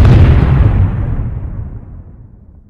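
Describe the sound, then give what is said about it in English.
A stick of dynamite explodes in a single heavy, booming blast, its deep low rumble rolling on and slowly fading away over a couple of seconds, with no voices. “As things started to go black, I tossed the stick. The explosion was wondrous.”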